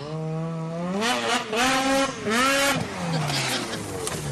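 A snowmobile engine revs hard in repeated surges as it is driven across water, its whining pitch climbing and falling three or four times, loud and steady with no talking.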